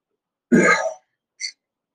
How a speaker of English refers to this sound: I've been coughing for some time, so I'm a bit late.